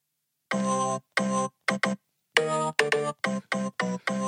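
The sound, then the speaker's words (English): A short run of loud, ringing tolling bell tones, around nine strikes in an uneven rhythm with some quick pairs, played like a brief musical sting as theme music for a weekly obituary segment, with no voices. “Well, that's the death, the bells dead, is are tolling for Captain Dave's weekly obituary.”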